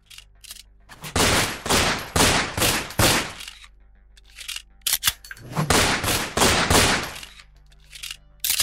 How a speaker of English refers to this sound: The other two guards started firing at him from within the guardhouse with their pistols, and the bullets shattered the front window.